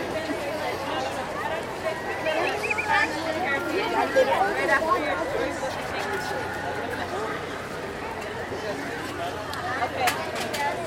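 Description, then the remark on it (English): A steady murmur of crowd chatter from people waiting in the Splash Mountain single rider line. Many overlapping voices blend into a continuous babble with no single speaker standing out, holding an even moderate loudness throughout. “Okay, we're out of the background booth areas and only have ambient crowd noises.”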